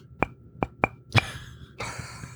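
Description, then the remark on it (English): Four sharp, ringing knocks of ceramic coffee mugs tapping together, the first three evenly spaced and the fourth louder, followed by a soft rustling hiss. “The awkward ending and suddenly, the mug knock.”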